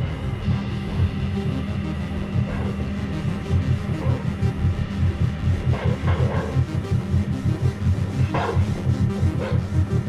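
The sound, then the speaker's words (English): A few short, synthetic dog barks from a video game pop out over a steady, throbbing electronic hum, with no one talking. “There's the dog.”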